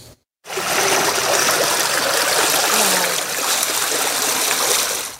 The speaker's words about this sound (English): One yard, as you can see, completely submerged in water after the Creighton Valley Creek burst its banks.